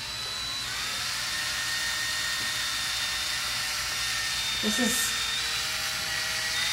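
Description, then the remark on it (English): A power tool whirs with a steady, high-pitched motorized whine that holds for the whole stretch, fairly loud, while a voice briefly speaks over it near the end. “fun with power tools.”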